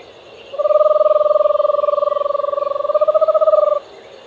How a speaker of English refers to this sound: Do you know which bird that was? The eastern screech owl.